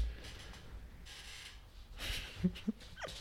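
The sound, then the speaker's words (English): A dog named Luna makes quiet noises, with soft huffing breaths followed by two brief, high whimpering yips close together near the end. No one speaks. “Anybody want a dog?”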